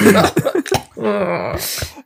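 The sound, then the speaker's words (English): A few short, rough, tearful throat-clearing coughs from someone getting emotional break out in quick succession, followed by a longer strained, breathy vocal sound that trails off. “That was like a clearing tear cough.”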